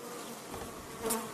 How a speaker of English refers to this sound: A few weeks back, I paid a visit to a guy who keeps about 15 hives at the top of a building right in downtown Washington, D.C. And on this particularly hot day, the bees were not into me or my microphone.